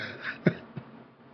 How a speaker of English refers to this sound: But I'm sorry for coughing on the thing.